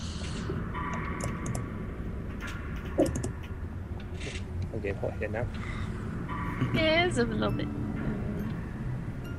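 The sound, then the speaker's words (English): Rapid keyboard typing, a steady patter of clicks amid a busy, noisy background with murmuring voices and occasional tonal sounds layered over it. “What do I hear and what do I see inside? Typing.”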